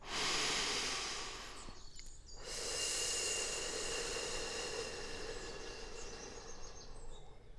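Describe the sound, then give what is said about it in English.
A long, steady, snake-like breathy hiss pushed out through the mouth, broken by a short pause for breath, then a second sustained hiss that trails on, with no talking. “But as you breathe in again, I want you to let go of those questions inside of your mind and then blow the thoughts away on your breath with a snaky hiss.”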